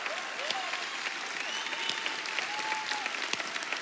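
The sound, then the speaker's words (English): A large church audience claps steadily and densely throughout for the children's volunteers and team, a continuous wash of many hands with a few scattered cheers and whoops rising above it. “Slow clap. Just get the slow clap.”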